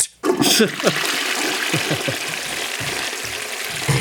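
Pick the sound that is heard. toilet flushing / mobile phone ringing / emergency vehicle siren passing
toilet flushing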